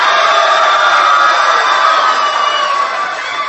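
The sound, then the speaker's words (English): A large live crowd at a battle at the Hawthorne Theater cheers and shouts loudly and continuously, a dense roar of many voices that holds steady throughout and eases only slightly near the end. “if I have to go off crowd reaction, unfortunately, I got to go with Lil Swizz”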